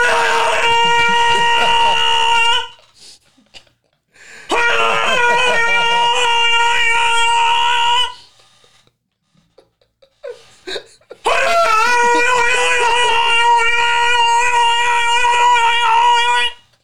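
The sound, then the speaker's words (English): A voice yells loud, sustained, nasal droning tones that imitate a bagpipe. There are three long blasts of several seconds each, separated by short pauses, and no other talking. “It's hard to feel sad when you hear a bagpipe.”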